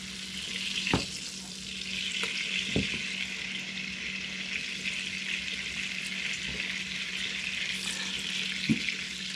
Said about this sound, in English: So now we've got this going. And I'll turn the pan around like this and like this to get the butter to almost, you know, fully submerge many of these shrimp as they're frying.